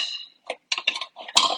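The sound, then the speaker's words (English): A knife chops chicken on a cutting board: a handful of irregular knocks with brief gaps between them, and one sharper, heavier strike near the end. “Last little piece here, just chopping him up.”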